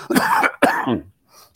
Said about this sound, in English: I've had this cough going on for a couple days.